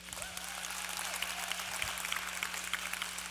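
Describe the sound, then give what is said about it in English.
A crowd claps steadily for a few seconds, a dense, even wash of applause at moderate volume with no speech over it, applauding news that a fundraiser for the Eagle Sports Cup run has reached just over $20,000. “We are at just over $20,000 right now, so we should clap for that.”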